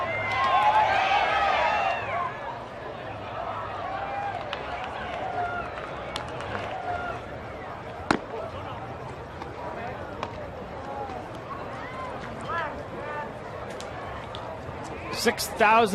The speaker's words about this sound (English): 6,144 people here tonight. Some of them dwindling now, but that was the crowd at the Zenith.